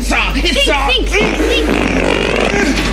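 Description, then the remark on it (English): A run of loud, wobbling fart sounds, several bursts back to back with a buzzy, voice-like pitch, over a steady low hum for about three seconds. “Okay, farts are fucking funny.”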